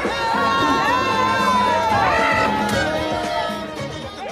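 An outdoor crowd cheers jubilantly, with many voices whooping and shouting over one another in a loud, sustained roar that eases off slightly toward the end.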